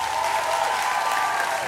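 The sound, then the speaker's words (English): Steady applause from many hands for a returning guest on a show, a dense, continuous wash of clapping that stays at an even loudness for under two seconds with no voices over it. “Hand claps to him.”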